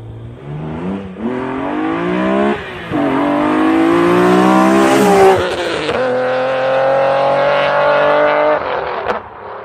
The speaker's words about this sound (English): Well, it's not a Mark IV. I think it's a Nissan 350Z.